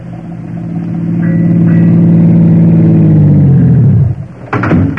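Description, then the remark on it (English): A car engine revs up loudly, its low drone climbing in pitch for several seconds before dropping off, followed by a sharp metallic clunk like a door near the end. “Hey, why don't you drive us right into the drink and be done with it?”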